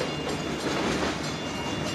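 A train rumbles along railroad tracks with a steady, dense roar and faint clatter of wheels, fairly loud throughout the short stretch, with no one talking.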